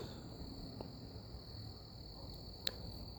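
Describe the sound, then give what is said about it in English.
A steady, high-pitched trill of crickets chirping continuously outdoors, fairly quiet, with a couple of faint clicks and soft background noise at night. “I know these crickets and fireflies are probably annoying as fuck.”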